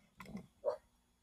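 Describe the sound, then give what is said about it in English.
Two quick dog barks in succession, faint, with near silence before and after. “Dogs again. They're never quiet when you need them to be quiet.”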